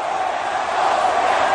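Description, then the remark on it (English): A large Canadian arena crowd at a Raw wrestling show boos in a loud, steady roar of many voices, with no break or single voice standing out over the brief stretch. “But he's accurate as far as the booing.”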